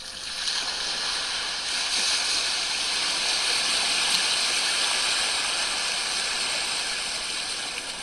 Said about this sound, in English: The sea is so calm today, so still. An occasional little wave rippling into shore.